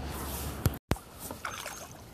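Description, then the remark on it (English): A boat being paddled on a river in Boston: a steady wash of moving water with a couple of sharp paddle splashes and soft dripping in between, and no voices. “So now we're paddling behind something that's a curious feature that most people would not expect to be part of Boston.”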